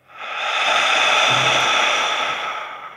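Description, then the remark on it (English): A long, forceful lion's breath exhale pushed out through the mouth during a breathing exercise, a loud, steady, airy hiss that swells quickly and holds for a few seconds before easing off, with no talking. “Lion's breath out.”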